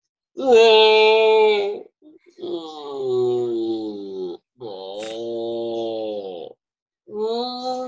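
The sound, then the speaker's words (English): A voice imitates a stomach groaning after eating five cubes of frozen spinach, with four long, drawn-out moaning wails, each sliding slowly downward in pitch, loud and tonal like whale song, separated by short pauses. “Someone's like, "Is that whale song? What the fuck is that?"”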